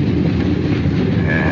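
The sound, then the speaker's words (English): A train's wheels rumble and clack over the rails in a loud, steady, continuous roar. A thin high whine rises near the end, and there are no voices. “clickety-zip and flang of signals, clipping down on semaphores, water tanks, and tiny depots”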